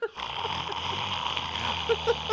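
A bourbon old fashioned is slurped from a glass in a long, wet, hissing sip lasting a couple of seconds, with a few sharper gulping bursts toward the end.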